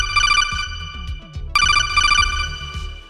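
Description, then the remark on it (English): A telephone rings with a bright, warbling electronic trill in two loud bursts separated by a short pause, over a low rhythmic musical backing with no talking. “Let's let's go to the phones.”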